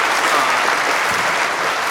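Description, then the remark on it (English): Steady applause from an audience for guest Jim Hoft, a dense, even wash of many hands clapping at a consistent loudness for the full two seconds, with no voices standing out. “Once again, I think you deserve another applause.”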